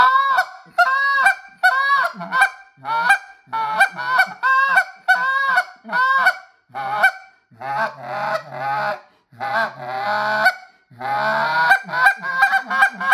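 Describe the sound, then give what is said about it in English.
An Alpha goose call blown in a steady series of loud honks and clucks, imitating geese, with brief pauses between bursts and no talking. “This call could be the one call that you take to the field and would do everything. You can still get the big goose.”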